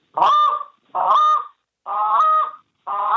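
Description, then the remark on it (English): Four drawn-out, moaning notes blown on a goose call in a steady rhythm. Each is a loud, reedy note about half a second long that sags toward a lower tail, made by dropping the jaw. Short silences separate the notes. “And then there's the moan”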